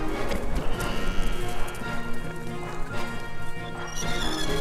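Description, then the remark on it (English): A party of horsemen led by Kirk gallops at full tilt across the desert and through a huge iron gate, hooves clip-clopping in a rapid, continuous drumming that stays loud throughout, with a brief whinny mixed into the busy clatter. “They gallop at full tilt, led by Kirk.”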